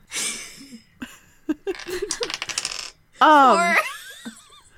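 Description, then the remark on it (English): Dice rolled for dagger damage in a tabletop role-playing game clatter onto a hard tabletop: a couple of sharp knocks, then a quick rattling run of clicks as they tumble and settle, followed by a burst of giggly laughter. “Kai, roll your dagger damage for me.”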